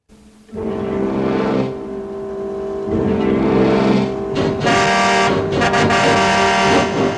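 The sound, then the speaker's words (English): A loud car engine revs in a sustained, growling roar that surges and dips several times, turning harsher and more ragged toward the end, with no talking. “Now it returns as the car.”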